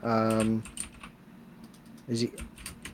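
PC keyboard keys clack in a scattered run of quick presses as someone tries keys to start the game Mega Man 2, alongside two short electronic beeping tones, one at the start and one near the end.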